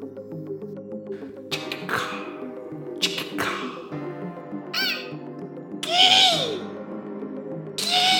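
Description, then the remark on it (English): Jungle ambience from a Sounds of the Rainforest DVD playing in the background, with several loud bird calls, including hooting and harsh cawing cries, plus sweeping whistles and bursts of chirping over a steady layered background drone. “There's a weird, like, Sounds of the Rainforest DVD playing in the background, and I'm into it.”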